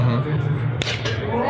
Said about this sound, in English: You see that? Was that a slap or a punch? I think it's definitely a slap because I think they show they're or yeah, maybe they show another angle after this too.